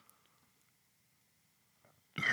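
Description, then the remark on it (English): A loud burp erupts suddenly after about two seconds of near silence, a short rough blast that cuts off at the end. “I had to burp.”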